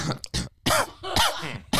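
A run of harsh, throaty coughs, loud, coming in several uneven bursts with short gaps, some rasping like throat clearing. No talking.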